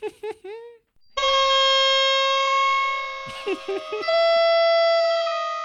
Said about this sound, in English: Should that just be one long clown honk? Yeah. Okay. I'll just drag that out, hopefully long enough that it gets really distorted.